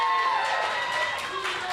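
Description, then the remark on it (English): A crowd applauds and cheers for itself for coming out tonight, in a steady, dense wash of clapping mixed with shouting voices, fairly loud and continuous throughout the short stretch. “Clap it up for yourselves for coming out tonight and supporting these guys. Come on, let's hear it right now.”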